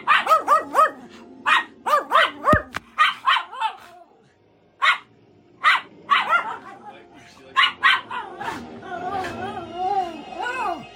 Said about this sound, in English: We split that movie into three nights because these fools given me such a headache from barking at the movie, just flipping out. And not just barking, but hopping up and down and then barking at each other and just going nuts.